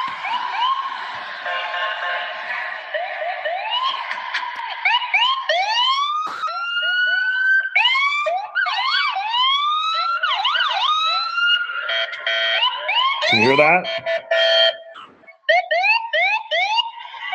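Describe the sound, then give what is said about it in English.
Loud ambulance sirens wail and yelp continuously, several tones overlapping and sweeping up and down, with a brief spoken remark near the start. An ambulance roars in, part of a parade of aid cars circling for minutes in Renton, with Renton police, Renton fire department, AMR and TriMed Medical there. “I heard an ambulance come roaring in, and let me see if I can play this for you real quick,”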